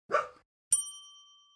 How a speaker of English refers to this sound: Normally, I try to edit out as much of Finley's barks as I can, but A, he was particularly barky this session